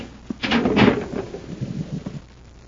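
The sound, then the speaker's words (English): A heavy concealed door in a sub-basement slides open with a loud, rumbling scrape that peaks quickly, then trails off into softer grinding and low thuds as it settles. No voices are heard. “There's a concealed door here.”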